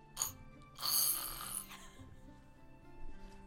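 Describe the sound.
A person mimics a cat hacking up a hairball: a short raspy burst, then a longer harsh, gagging rasp with a throaty, snore-like rattle, fading into faint low rumbling.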